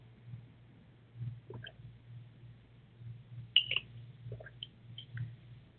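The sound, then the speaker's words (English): Someone quietly takes a drink of water: a few soft, wet sips and swallowing clicks scattered over several seconds, above a low steady hum with no talking. “To get some water, a little bit of water.”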